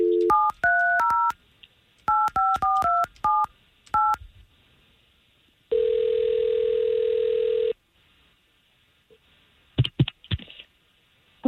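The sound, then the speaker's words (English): Rapid telephone keypad tones beep out a number as radio station K92.3 in Orlando calls a listener, followed by a single steady ring lasting about two seconds, then a few clicks as the line picks up. No one speaks. “We're going to try to call her right now.”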